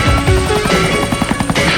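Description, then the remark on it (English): A helicopter flying, its rotor beating in a fast, steady chop over a loud, droning engine whine. No one speaks. “And then the Genevan Heathen and Mouth fly out the cave in a helicopter.”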